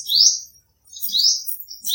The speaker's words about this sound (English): And finally, the sound of birds in English, which can be just singing. Birds can be singing, but they can also be chirping.